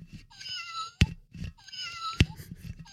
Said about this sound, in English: That sounds kind of like a purring noise, actually. Yeah. It's like a metallic purr. Yeah. Which is appropriate for a cat on a stick.